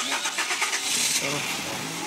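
A car engine cranks with rapid rhythmic pulses, catches and settles into a steady running rumble, moderately loud, with a faint voice briefly underneath.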